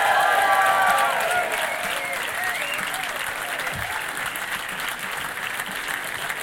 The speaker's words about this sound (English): Ladies and gentlemen, please give a very warm round of applause to Elis James.